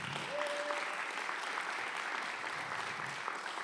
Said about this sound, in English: I just want to thank everybody who serves in the life of this community. And we can give them a round of applause.